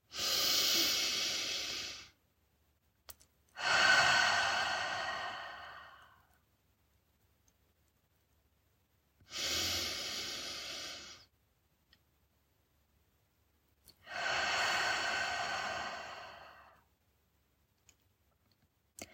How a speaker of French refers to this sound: Prenez quelques respirations profondes par le nez et expirez par la bouche et laissez-vous vous détendre et vous sentir calme.